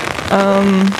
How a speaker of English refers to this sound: I'm pretty sure you can hear this, but it is raining outside, and I do have an umbrella